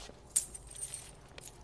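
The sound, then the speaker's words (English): A brief metallic jangle of keys being handed back to a prison guard, fairly quiet, with a sharper clink near the start and a lighter rattle later, no one speaking. “Here's your keys back.”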